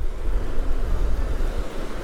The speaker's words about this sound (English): And the sea's a little bit rough today. Yeah. And there's a little bit of a breeze.